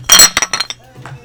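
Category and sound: household object, glasses clinking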